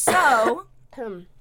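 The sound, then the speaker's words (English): Two voiced coughs from a person who is sick, the first loud with a sharp, breathy attack and the second shorter and softer, with a brief pause between them. “You need to stop coughing.”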